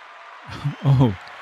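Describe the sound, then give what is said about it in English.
A small family group cheers on the hosts of the show You Were Made for This: a quick rising whoop followed by a louder, longer burst of cheering, over a steady background hiss. “thanks for bringing your family here to cheer us on today.”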